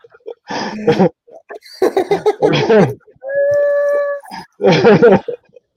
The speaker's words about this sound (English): Oh, that was a dog. Yeah, she. Yeah, this dog goes on the fucking, you know, merry-go-round, fucking by the neck.